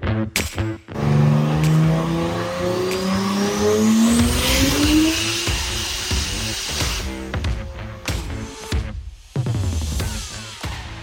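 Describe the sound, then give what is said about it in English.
A 2JZ-swapped RX-8 sports car engine revs hard, its pitch climbing and falling through several throttle blips, loud, with a brief squeal near the end and no talking. “That is his 2JZ swapped RX-8.”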